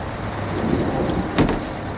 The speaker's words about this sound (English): You should grab this bus.